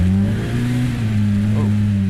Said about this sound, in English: This high displacement, high revving engine allows for a unique sound. The engine roar is unmistakable.